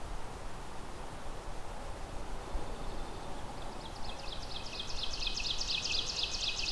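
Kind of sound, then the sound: bird, ovenbird song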